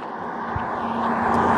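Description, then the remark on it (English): A car passing by, a steady engine rumble with a low humming drone that grows slightly louder over the moment, with no voices. “There's a car.”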